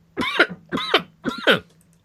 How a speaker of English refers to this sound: I'm going to cough, so give me just a moment.